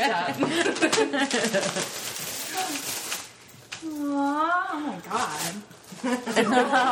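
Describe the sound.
Pink gift wrapping paper is torn open in rapid, noisy rips and crinkles, pausing while a voice lets out a drawn-out exclamation, then more tearing follows.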